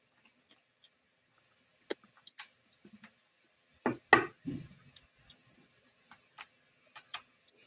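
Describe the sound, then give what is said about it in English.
A dog named Lucy thumps her head against a door: a quick burst of three heavy bumps midway, with scattered light taps and clicks before and after. No one speaks. “She started banging her head against the door because I didn't leave it open.”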